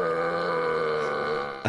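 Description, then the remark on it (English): A long, drawn-out burp, fairly loud, holding a steady croaking tone for over a second before ending in a brief rough burst. No one talks. “The first thing I get is a burp.”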